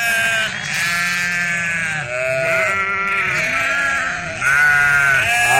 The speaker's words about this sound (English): Yes, that is what you call the bleating of the sheep. There's no better way to explain bah, right? The bleating of the sheep.